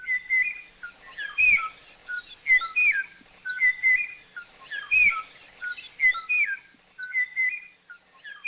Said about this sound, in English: A very small population of this species made it into the 1980s in the highest forest near the top of Kauai, when the last known individual was recorded singing its beautiful and haunting song to a mate that no longer existed.